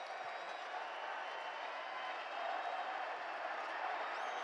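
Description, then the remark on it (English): A large arena crowd cheers and roars after a made free throw, in a steady, dense wash of noise that swells slightly midway, with no individual voices standing out. “Crowd loves it.”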